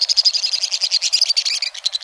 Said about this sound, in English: A torrent of shrill notes ricochets off the sheer stone walls of a western canyon. A pair of white-throated swifts careens by at high speed, revealing boldly patterned bodies.